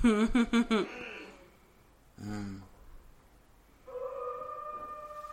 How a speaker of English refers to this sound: That wolf howl, though.